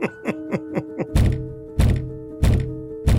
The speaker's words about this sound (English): And spends the next 7 minutes banging his head against a closed door.